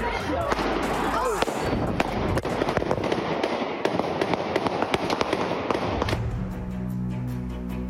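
Rapid gunshots crackle in a dense, irregular burst of sharp bangs on a city street in Philadelphia during a street fight, loud, over a rumble of crowd noise as hundreds of people flee, then stop abruptly, leaving a low hum.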